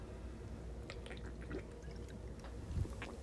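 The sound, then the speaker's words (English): Quiet sounds of someone drinking water: soft liquid sloshing and a few small wet clicks and gulps over a low background hum, with no talking. “Sorry, I had to drink some water.”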